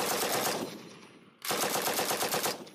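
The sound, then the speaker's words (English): Two sustained bursts of rapid automatic gunfire, the first shots, loud, the first fading briefly before a second dense volley erupts, with no voices present. “The police say the first shots were automatic gunfire from the move house.”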